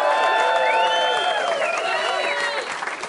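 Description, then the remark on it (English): A crowd at the Grand Social claps and cheers steadily for Eamon Dunphy and Richie Sadler, with bright shouts and whoops rising over the dense wash of applause throughout, loud and sustained. “Eamon Dunphy and Richie Sadler there getting an absolutely brilliant reaction from the crowd at the Grand Social last night.”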